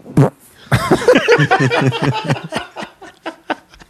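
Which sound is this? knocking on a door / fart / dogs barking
fart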